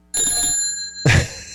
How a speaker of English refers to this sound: I need a bell. Right now, all I've got is my bike bell that I never put on my bike here.